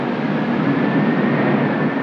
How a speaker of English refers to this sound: A hurricane screech as it approached.